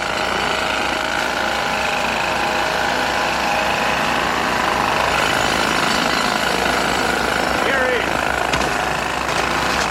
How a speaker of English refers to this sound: But the one in is phenomenal because you get to see Schwarzenegger operating a jackhammer with his ridiculously giant muscles. Super sweaty.